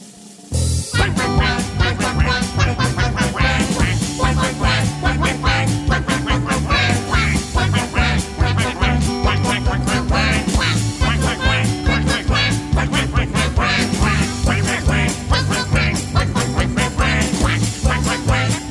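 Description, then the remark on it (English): Loud duck quacking repeats in a fast, steady rhythm for the whole stretch, set against a pulsing, music-like backing with no talking. “But the duck goes.”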